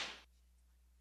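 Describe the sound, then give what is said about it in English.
A single sharp Indiana Jones-style whip-crack sound effect, played for a radio show's zip whip call-in line, a bright hissy snap that fades within a quarter second, leaving only a faint low hum with no voices. “Always enjoy hearing our Indiana Jones sound effect here in the morning.”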